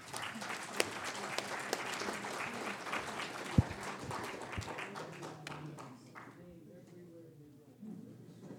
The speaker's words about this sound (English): So everybody, a round of applause as we welcome Shannon back.